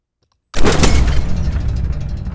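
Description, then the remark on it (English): After a moment of silence, a synthesized explosion rendered in a 3D simulation and set 1 meter up in the air bursts in loudly, a single deep boom whose heavy low rumble and crackling noise carry on without fading much. No one speaks. “Now if I unmute my psi explosion,”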